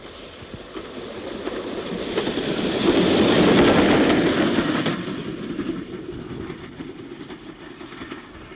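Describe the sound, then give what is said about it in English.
The Western Pullman train rolls by on the rails, its broad rumble and faint rhythmic clatter swelling to a loud pass midway, then slowly fading away. No voices. “That was the Western Pullman.”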